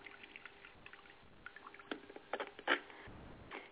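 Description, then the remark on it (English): Coffee is poured for a coffee reading in a quiet, uneven splash with scattered wet clicks and a stronger gurgle near the end, with no talking. “Now, I'm doing the coffee readings tonight, so we're going to pour the coffee and see what direction it's going in.”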